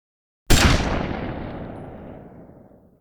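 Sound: gunshot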